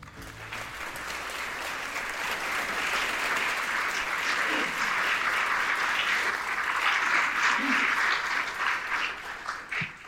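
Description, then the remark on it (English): Sustained applause from a large audience at a library talk, welcoming the host, a dense wash of clapping that holds steady for about ten seconds before thinning slightly at the end. “The journalist in me hates to have applause for me.”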